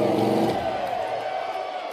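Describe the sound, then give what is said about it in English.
The Undertaker's motorcycle, ridden by Hogan, revs loudly and steadily, its throaty roar shifting slightly in pitch, with a noisy crowd cheering in the background. “That's the Undertaker's bike, so Hogan is certainly not accustomed to riding that motorcycle.”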